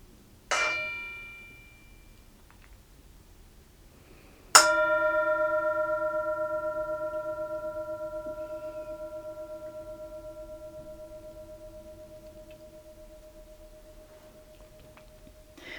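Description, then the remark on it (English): A bell is struck twice: a short first ring, then a second, stronger strike whose clear, steady tone sustains and slowly fades away over more than ten seconds in quiet surroundings. “Here's the bell.”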